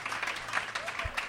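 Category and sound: crowd, audience cheering and applauding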